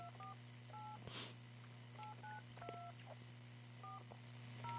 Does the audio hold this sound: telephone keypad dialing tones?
yes